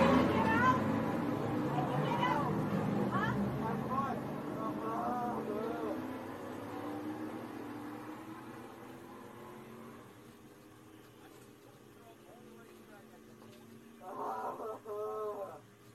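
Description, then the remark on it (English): Race trucks roll past under caution at a steady, moderate pace, their engines droning and shifting in pitch as they go by, fading toward the end before a brief muffled voice-like burst. “And the trucks are going by under caution.”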